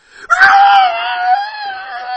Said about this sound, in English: A high-pitched shriek pierces the valley, startles Val.